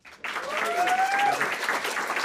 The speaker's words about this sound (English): But please also give a round of applause